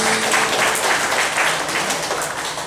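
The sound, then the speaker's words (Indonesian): An audience applauds for God after a prayer, a steady, dense wash of many hands clapping at once, loud and continuous for the whole stretch with no voices standing out. “Sekali lagi tepuk tangan buat Tuhan.”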